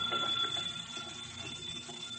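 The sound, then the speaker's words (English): A telephone bell rings continuously in the radio drama The Adventures of Dick Tracy, a steady, bright metallic jangle with a high tone running through it, holding an even loudness throughout with no voices. “But why is the telephone ringing?”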